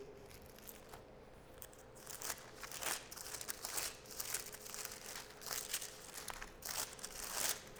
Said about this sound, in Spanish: Decía el hermano Juan Tartersol, me gusta oír cuando oigo las hojas de la Biblia moverse en la iglesia. Qué delicioso se oye ese ruido, decía él.